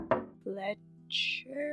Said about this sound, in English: Haku, the door is closed. What do you do? Fletcher? Haku does a little knock.